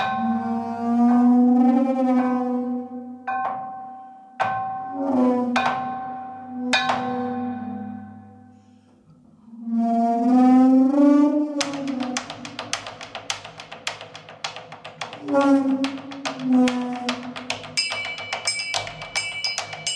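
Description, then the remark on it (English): Eerie, wavering bowed tones glide and swell from a waterphone, then give way to dense, rattling clatter of struck custom chimes and glass jars, with high ringing notes near the end. No voices. “a group of guys, and all they just play strange percussion. The whole, everything, you know, there's nothing other than, you know, waterphone, custom chimes, bode saws, wooden boards, glass jars.”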